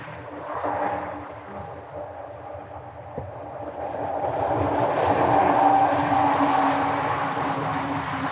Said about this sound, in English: Shame about the car traffic. Car noise.